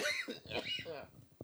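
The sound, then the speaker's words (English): A person coughs a few times, harsh, the rough bursts mixed in with voiced, speech-like sounds and throat noise. “I was there, coughing, and then you said maggot, and I'm like, oh, God.”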